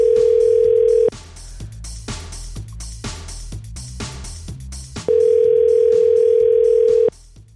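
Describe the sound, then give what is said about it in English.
Two loud, steady ringback tones from an outgoing phone call, each about a second or two long and spaced four seconds apart, with quieter rhythmic music playing underneath and between them. “I like the part of the show when a phone rings.”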